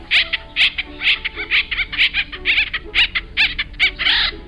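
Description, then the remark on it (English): Acorn woodpeckers calling in a rapid, raucous series of harsh, squeaky notes, repeating in quick bursts for several seconds with no talking over them. “The nuts are acorns, and the bird is the acorn woodpecker.”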